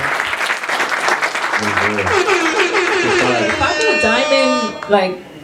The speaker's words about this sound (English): Clap it up for … one time.